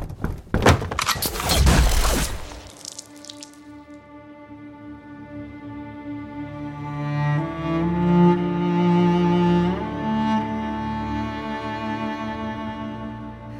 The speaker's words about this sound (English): As the cacophonous sound of the gunshot echoes through the store, there is a brief flash of horrific realization and regret on Skye's face before she swallows it.